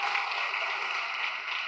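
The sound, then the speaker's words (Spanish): An audience applauds together in the afternoon, giving applause to the Lord for the young people taking part, a steady wash of many hands clapping at an even, moderate loudness, with no voices standing out above it. “¿Qué tal si le damos un aplauso al Señor por eso en esta tarde?”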